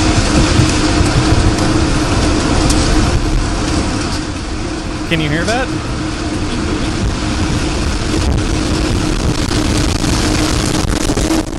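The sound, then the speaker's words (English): A tornado's wind roars in a loud, unbroken rush, like a rumbling freight train, in a video of a tornado that flattened an entire town. A person briefly speaks over it, and a faint warbling tone cuts through midway. “Oh, the audio is... it's loud. Like they see in Twister. It was windy.”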